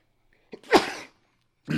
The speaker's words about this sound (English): Oh my God, I just sneezed. Sorry.